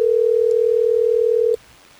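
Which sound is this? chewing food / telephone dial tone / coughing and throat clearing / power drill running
telephone dial tone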